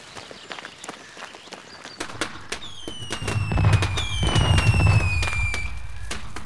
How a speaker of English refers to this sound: Oh man, I love fireworks!